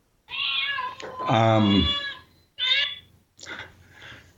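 A phone ringtone made of cat meows plays: a long, drawn-out meow followed by two shorter ones, loud, with brief gaps between the calls.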